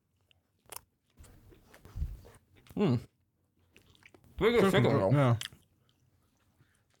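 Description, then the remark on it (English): Someone chews a mouthful of spicy chicken, with a sharp bite followed by a stretch of moist, crunchy chewing. A voice then gives a drawn-out, appreciative hum. “Okay, the chickens are really good.”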